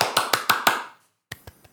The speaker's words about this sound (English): And as narrative nerds, we applaud.